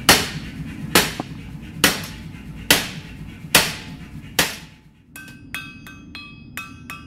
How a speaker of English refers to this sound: Once it glows, he picks up a hammer and starts to shape it by hand.